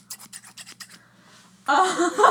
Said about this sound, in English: That was me doing scissors. So right now, we're just being very chill. We're doing arts and crafts in my basement. Yes. I'm making a mood board collage thing. So I'm cutting up a whole bunch of pictures.